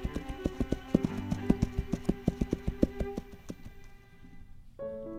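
Steady clip-clop of a horse's hooves trotting at an even pace as a rider travels across New England, lasting about three seconds over a sustained musical backing, then the hoofbeats stop and the music carries on quietly.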